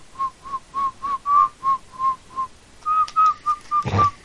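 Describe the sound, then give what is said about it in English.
A steady series of short, same-pitched whistled notes repeats in a quick rhythm, about a dozen toots whistled by people into a phone during a call to an automated phone menu, with a brief rough burst near the end and no talking. “Oh, we didn't whistle enough.”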